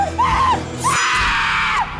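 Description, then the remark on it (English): A loud, high-pitched scream rings out twice in quick succession, the second cry longer and more piercing, with a low rumbling background beneath. “Is that somebody screaming?”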